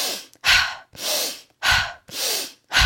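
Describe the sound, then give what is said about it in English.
Forceful, rhythmic breathwork meditation breathing: deep rushing inhales alternating with brief, sharp exhales, about five loud breaths in quick succession with no talking. “So this one particular one that I'm going to link you to, it's a deep inhale in and a short exhale out. I'll tell you what it sounds like.”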